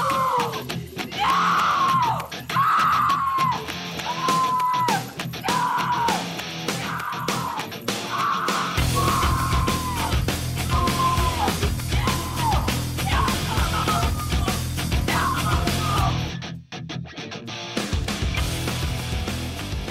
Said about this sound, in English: Elizabeth just screams about 18 times in a row.